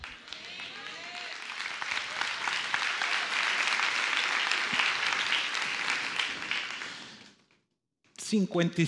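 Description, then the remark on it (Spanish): Sustained applause from part of an audience during a sermon, a dense crackle of many hands clapping for about seven seconds before fading out, then a brief pause and a voice begins speaking. “¿55-60% por allá aplaudió?”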